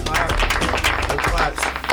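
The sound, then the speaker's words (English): A small group of people in a room clapping steadily for a couple of seconds for their guest Joe Mazzulla, assistant coach of the Boston Celtics, a dense patter of hand claps with voices mixed in underneath. “Woo, clap it up, everybody.”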